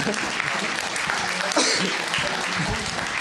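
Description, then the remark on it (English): A crowd breaks into steady, dense, loud applause that fills the whole moment, with a few voices murmuring faintly beneath the clapping. “Round of applause.”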